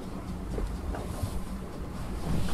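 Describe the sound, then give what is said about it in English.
A coffee maker finishing its brew gives off a continuous hissing, rumbling gurgle, steady and moderately loud, swelling slightly toward the end with no voices present. “Oh, now the coffee is done. I don't know if you can hear it.”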